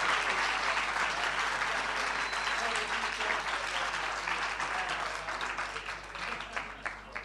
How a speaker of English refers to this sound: Thank you. Wow. Let's give a round of applause for that incredible, incredible presentation.